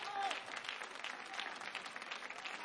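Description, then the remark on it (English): An audience claps their hands in a dense, steady wash of applause, many overlapping claps blending into continuous noise, with a brief faint tone near the start. “Come on, clap your hands.”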